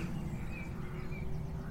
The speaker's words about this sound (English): That airplane's pretty loud up there, but you can probably still hear, oh, I hear the little rooster over there. You can hear the birds intermingled with Mr. Airplane as well. But it goes by.